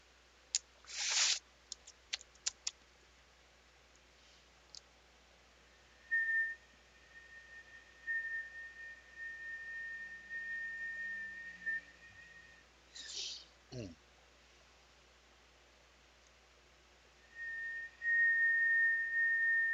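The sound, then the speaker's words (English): Several people whistle a long, steady high note with their lips as part of a Native American shamanistic ritual, holding it in stretches with brief breaks, mixed with a few sharp clicks and a short rising squeak in the middle. “Make sure your lips are in whistling condition.”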